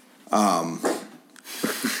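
A dog named Oliver barks: one longer, drawn-out bark followed by a few shorter, rougher bursts, with no talking over it.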